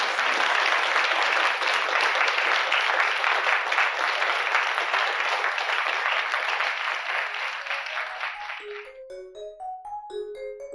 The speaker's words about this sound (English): As we close this session, ladies and gentlemen, please give Olivia a round of applause for this amazing conversation.